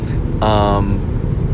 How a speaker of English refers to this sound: For the past year that I've been doing these, I just do them in my car as I'm driving around.